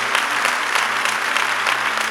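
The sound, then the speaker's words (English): A crowd applauds steadily as a clap offering to God, a dense wash of many hands clapping at once, loud and sustained throughout with no voices standing out. “I want to give God a mighty clap offering.”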